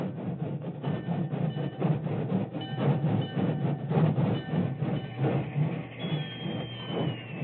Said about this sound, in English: It was only a short time later, and the rain was barely a drizzle, when an engine whistle announced the work train's arrival on the main track beside the Medicine Hat telegraph station.